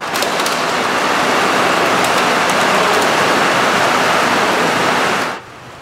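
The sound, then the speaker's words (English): Fast-moving water of Lynn Creek in North Vancouver rushes in a loud, steady roar for about five seconds, then cuts off abruptly into near silence. No voices are heard. “Police in North Vancouver are trying to find out how a vehicle ended up abandoned in the fast-moving waters of Lynn Creek this morning.”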